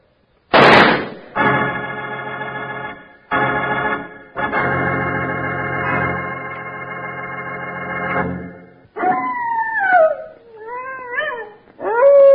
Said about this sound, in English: That's the howl of a prairie wolf, Charlie. And a hungry howl at that. If you're sleeping out on the range alone, it's an important sound to know.